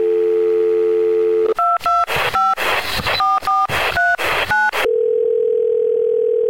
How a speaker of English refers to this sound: Let's dial back out to the Movie Zone phone.